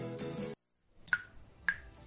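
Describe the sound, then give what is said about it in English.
Two clear water drips from a leak plink about half a second apart, each a short bright drop with a ringing tone, after a burst of music cuts off into brief silence. “Even tiny leaks can be huge water wasters.”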